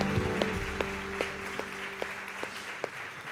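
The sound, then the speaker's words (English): Audience applause at a baptism service at Branch: a steady wash of clapping from a crowd, with a few sharper individual claps popping out at a regular beat and a low sustained hum underneath. “a big round of applause.”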